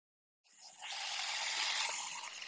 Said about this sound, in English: No, I'm pouring water in a cup. Pouring water in a cup, eh? Yeah. In a big ceramic cup.